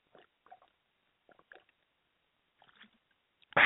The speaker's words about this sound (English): I took some water. That's some fine H2O.